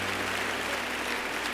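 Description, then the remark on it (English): An audience claps hands in praise, giving God a hand of praise, a dense, steady wash of applause that holds evenly throughout at moderate loudness, with a faint hum underneath and no voices. “Clap those hands and give God a hand of praise.”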